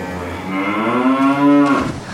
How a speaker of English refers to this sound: Oh, no. It's a cow and it's drowning. Hang on, cow.